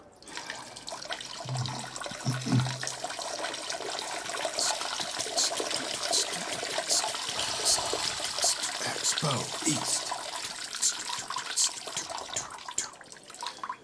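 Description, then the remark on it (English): Someone urinates and flushes a toilet during a bathroom break at a food expo: a steady, hissing rush of water runs nearly fourteen seconds, with faint low murmurs briefly underneath. “I gotta go take a leak.”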